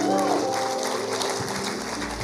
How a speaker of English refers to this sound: Why don't we give these people a round of applause?